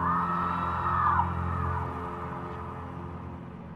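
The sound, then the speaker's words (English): A huge, monstrous scream roars out loud from a building that hinges open into a terrible maw, a sustained bellowing wail with a gravelly rumble underneath that slowly fades over a few seconds, with no one speaking. “And then you see the building you were in hinge open into this terrible maw and let out this big, loud scream.”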